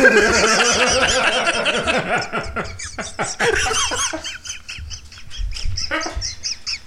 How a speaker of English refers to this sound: Why is Pigeon here?